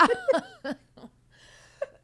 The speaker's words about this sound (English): You're making my smoker's cough come back.